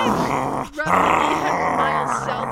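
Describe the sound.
A person growls loudly, a rough, rumbling vocal growl that breaks off for a moment, then resumes and carries on steadily to the end.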